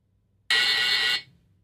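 A single harsh, steady game show buzzer blares for under a second, bright and loud, as a contestant buzzes in on a true-or-false trivia question, then cuts off abruptly with a brief fading tail. No one speaks.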